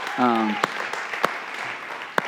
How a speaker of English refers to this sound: So the first thing I want to celebrate, I love water baptisms, and 13 students got baptized in water this year. So let's give God a clap for that.